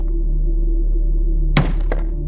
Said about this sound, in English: The rock did not move. Grounded in place, it stood there, unaffected by the hammer's impact.